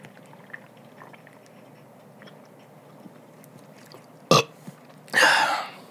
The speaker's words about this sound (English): All right. Get all the burps out.